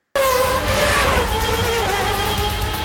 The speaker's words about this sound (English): You see the 195, zoom, zoom, two street cars.